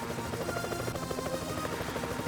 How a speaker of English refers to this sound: Can you play some futuristic music? Like that, plus some helicopter music, or not music, but some choppas?